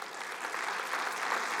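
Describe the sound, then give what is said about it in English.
An audience claps steadily together, a dense, even patter of many hands at a moderate level with no voices standing out. “So we're going to pray that, yeah, let's clap for that.”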